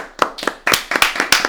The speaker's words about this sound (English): Let's clap it up for Ref Marley.